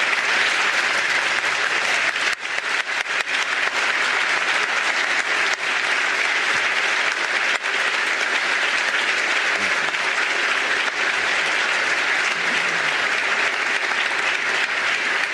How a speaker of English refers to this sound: Please join me in applauding her years of service to this state.